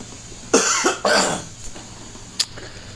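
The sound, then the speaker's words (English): A loud pair of harsh coughs in quick succession, followed by a softer throat-clearing rasp and a brief sharp catch, with no talking. “No COVID, just clear my throat.”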